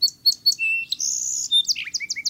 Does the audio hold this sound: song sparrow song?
yes